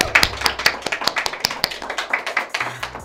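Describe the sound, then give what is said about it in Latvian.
A small group claps steadily, sharp overlapping hand claps with a brisk, uneven rhythm, moderately loud, no voices over it. “Dāmas, cilvēki aplausi”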